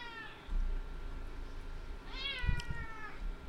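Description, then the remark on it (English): A cat meows twice, first a brief cry near the start, then a longer, drawn-out wail rising and falling, over a low rumbling background with a few soft thumps. “The cat has a urinary infection?”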